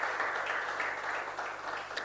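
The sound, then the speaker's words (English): A church audience applauds at the preacher's request, a dense, steady wash of many hands clapping together at an even loudness for a couple of seconds, with no voices standing out. “And those in church too, clap for me.”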